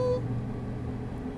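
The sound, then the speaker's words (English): A passing train rumbles steadily, a continuous low roar with a brief high tonal whine at the very start and no voices. “A train's going by.”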